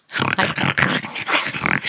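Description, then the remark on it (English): A person imitates a kangaroo's menacing, murderous heavy breathing: a quick series of harsh, growly huffs and snorts, loud, in a steady rhythm of about five or six breaths. “Think like murderous heavy breathing.”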